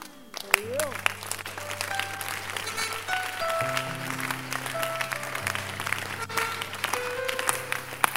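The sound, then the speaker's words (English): An audience claps continuously in a dense, even wash of applause over sustained keyboard chords, with scattered voices mixed in throughout. “Now stop clapping and look at your neighbor”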